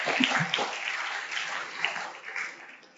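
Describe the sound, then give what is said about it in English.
A church audience applauds itself, a dense, steady wash of many hands clapping for about three seconds, holding fairly even before thinning slightly toward the end. “So give yourselves a big round of applause once again.”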